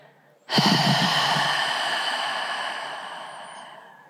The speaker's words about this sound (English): Breathing normally now, just a deep cleansing breath.